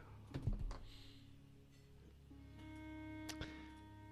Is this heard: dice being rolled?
yes